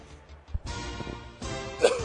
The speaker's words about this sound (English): All right. As I cough. As I die, I'm going to push through it, though.